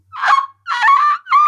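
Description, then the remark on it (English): A seagull calls three times in quick succession, loud, each cry a harsh, nasal squawk with a short gap between them and no one talking. “That's not really a note. That's a seagull.”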